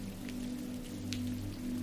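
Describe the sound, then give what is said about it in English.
Steady rain pattering, with soft scattered drop taps over a low constant hum. No voices, just an even wash of rainfall throughout. “The rain patters on your hood, and cool drops fall on your face.”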